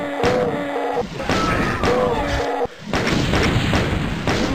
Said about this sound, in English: Oh, we got him, and we blew up a barrel as well.